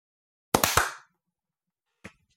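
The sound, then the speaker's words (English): A quick burst of sharp hand claps made as a sync clap for a recording, three in rapid succession with a brief ringing tail, then after a pause a single softer clap. No one speaks. “Shall we clap on 40?”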